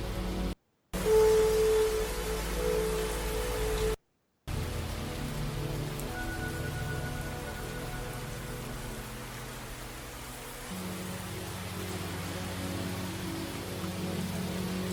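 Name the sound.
rain falling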